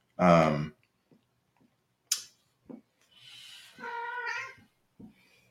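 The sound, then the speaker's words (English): A cat meows twice, first a loud, short meow, then after a pause a longer, wavering one, with a few faint ticks and clicks in between. No one speaks. “Well, there's Cat.”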